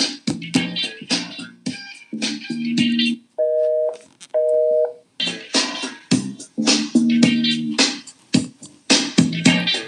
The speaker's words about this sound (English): Got a busy dial tone.